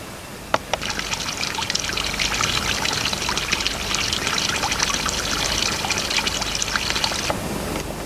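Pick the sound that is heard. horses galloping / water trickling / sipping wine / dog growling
water trickling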